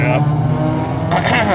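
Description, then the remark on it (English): A loud car engine roars past, a continuous throaty rumble that swells and brightens near the end as the vehicle speeds through. “There goes the first drag race.”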